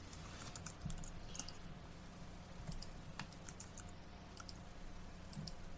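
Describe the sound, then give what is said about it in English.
Rapid, irregular computer keyboard typing with light plastic clicks, continuing steadily throughout over a low background hum, with no talking, as someone types out a baseball lineup. “Yeah, I'm typing it out so I don't miss anyone.”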